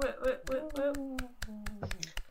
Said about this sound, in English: Round of applause at home.